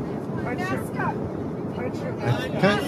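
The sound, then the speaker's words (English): Steady, loud jet airplane engine roar, a dense low rumble with a hiss above it, running unbroken for the whole clip while people talk over it. “I think the loudness is coming from the airplane. It's the jet, yeah.”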